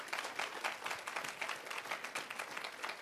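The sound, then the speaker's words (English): A church crowd claps together in steady applause, a dense run of overlapping hand claps filling the whole stretch at an even, moderate loudness, with no voices rising above it. “Come on, clap your hands and say amen.”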